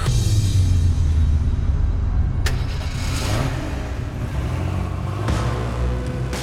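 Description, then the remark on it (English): A car engine rumbles steadily, its low drone rising in a few revs as the car gets under way, heading to a gas compressor station, with a couple of sharp clunks over the constant road noise. “He waited until the next time the hum appeared, and then jumped in his car and headed to the compressor station.”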